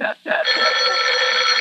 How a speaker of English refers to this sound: Oh, let it ring. Let it go on ringing. It's a trick of some kind. I won't answer it. I won't answer it. I won't. Even if it goes on ringing all night, I won't answer it.